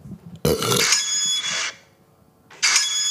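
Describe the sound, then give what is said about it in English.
An Opal card tap-on beep, recorded on a phone and played back: a loud, high-pitched electronic tone lasting about a second, then a short silence before a second matching tone begins and is cut off. “That's the Opal tap-on sound.”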